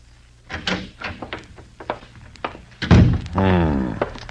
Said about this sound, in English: As the door to the living room opened and another man approached, he looked up from the cards.